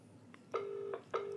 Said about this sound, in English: That's a UK ringtone. Yeah. Previous one was American.